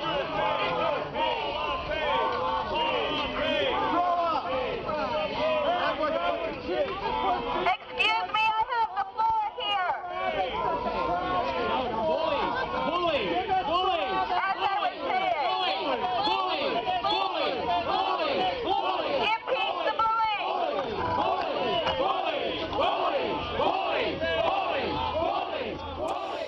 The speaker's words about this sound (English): getting shouted down by LePage supporters at a pro-impeachment rally in Augusta last week